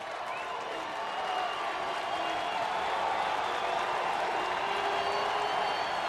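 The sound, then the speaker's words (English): A football stadium crowd, not a huge one, at a game between BYU and Hawaii roars and cheers steadily on a third down, a dense wash of voices and applause at a sustained loud level, with occasional whistles and shouts rising from the din. “The stadium begins to rock a little bit. Not a huge crowd, but a big enough crowd to make some noise.”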